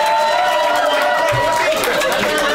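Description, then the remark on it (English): An audience screams and cheers for attention as a woman walks down the middle of the audience to give away a $5 bill, a loud, continuous roar of many voices blending into a dense, steady wall of sound with no break. “People are just screaming for attention.”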